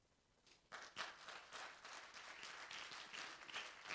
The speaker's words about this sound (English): Clap your hands too loud.